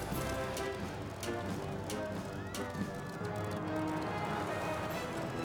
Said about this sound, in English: Horse riding! You know, I've always wanted to say that.